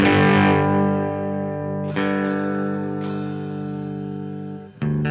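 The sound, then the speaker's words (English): A band playing its last song live: loud, heavily distorted electric guitar chords ring out and sustain, with a few fresh strums striking at uneven intervals over a steady droning low end; no voices. “It's our last song”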